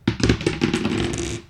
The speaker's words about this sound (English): Okay, are we rolling our dice? And so, yeah, we're going to do another round of Escape Pod, and whoever rolls higher is the active player. Oh, shoot. Sixes, roll again.